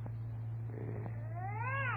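A cat lets out a drawn-out, wavering yowl that rises and swells in the second half, fairly loud over a steady low hum, with no one talking.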